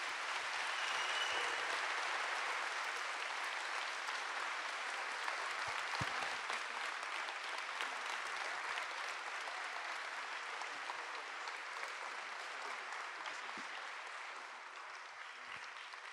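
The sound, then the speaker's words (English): Sustained applause from a sizable audience, a dense steady wash of clapping that holds strong for the whole stretch before easing slightly toward the end. “Big round of applause”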